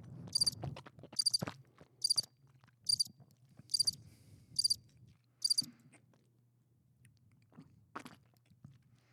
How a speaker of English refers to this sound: Oh, we got to play the crickets because now we're not talking.